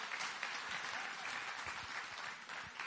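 An audience applauds steadily, a dense crackle of many hands clapping at once that holds at an even, fairly loud level for the whole stretch with no voices rising above it.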